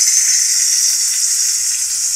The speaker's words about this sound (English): With that, we're going to move on to some hot, sizzling tater tots topic of the show. Sizzling tots. Tater tots, crispy and fresh.